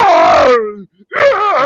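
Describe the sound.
A man's voice imitates a WWE wrestler's scream after a move: a loud, strained yell that slides downward, a brief pause, then a second wavering, rising-and-falling cry.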